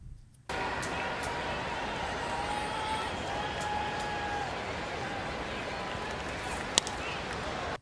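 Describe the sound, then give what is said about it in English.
Steady crowd murmur fills a baseball stadium before a pitch, a dense wash of indistinct chatter with faint tonal hums and one brief sharp click near the end. “I'm going to play what it sounds like before a pitch is thrown and there's no banging.”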